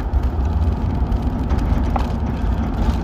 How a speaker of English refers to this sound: It's kind of cold. Air conditioner on.